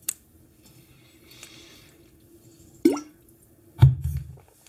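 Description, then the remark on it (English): Wet liquid sounds of someone drinking water: a small click, then a rising bloop and a deeper gulping splash a second apart, with quiet background otherwise and no talking. “It makes water sounds like a DM drinking.”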